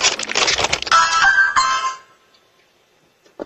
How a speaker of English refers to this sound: Interesting doorbell.